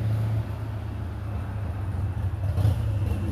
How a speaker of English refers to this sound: And there's a motorcycle coming to you live.